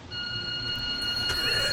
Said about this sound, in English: Hello. Ooh. I'm Laura Woods, and this is my doorbell.